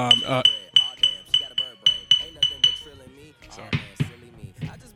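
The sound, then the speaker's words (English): Small glass crack vials clink together in a quick, steady series of about nine bright, ringing taps, fairly loud, while a voice talks underneath and keeps talking after the clinking stops. “to stop fucking clinking his crack vials? It's really annoying people. We can hear it.”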